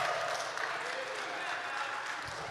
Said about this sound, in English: Good morning. I think that band deserves a great round of applause to start our service off.